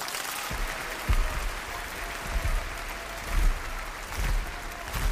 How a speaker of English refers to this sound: Tumultuous applause, probably similar to the 13 minutes of cheering for Vienna's first new Meistersinger in 47 years, in which got a standing ovation.